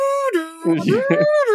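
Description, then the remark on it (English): A voice imitates the dramatic siren sound from Kill Bill, a sustained wailing tone whose pitch dips low, then climbs back up and holds high, with a rougher, breathier stretch in the middle. “And it's then, like the Kill Bill siren sound.”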